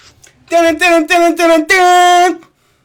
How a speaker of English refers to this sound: That's my quiz theme.